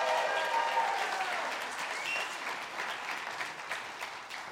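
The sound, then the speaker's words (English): A crowd at New Song claps steadily on a Father's Day morning for Kathy and Mondo, who made pancakes for everyone on their grill, in dense, continuous applause, fairly loud at first and tapering slightly over a few seconds, with a few faint whistles mixed in. “Let's give Kathy and Mondo out there a big round of applause.”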